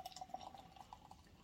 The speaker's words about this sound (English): Oh, I poured.